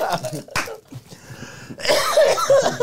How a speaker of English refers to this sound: Why are you coughing like that? Because you got me. I was about to say, sir, I am coughing. COVID is over. Because I'm laughing a lot.